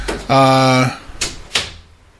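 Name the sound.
door being pushed shut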